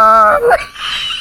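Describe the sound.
A voice imitates the groggy whimper of a person hopped up on anesthesia: a sustained, wavering moan that bends downward, then trails into a breathy, airy exhale. Loud and alone, with no words.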